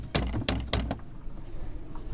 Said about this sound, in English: It looks like a pretty unassuming terraced house from the outside. Lovely bunting on the railings on the garden wall next door. Let's have a knock, see if anyone's in.